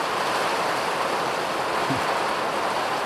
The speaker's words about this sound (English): The Atlantic Ocean is literally about 200 meters from my house, so this is like a proper squall coming off the Atlantic Ocean.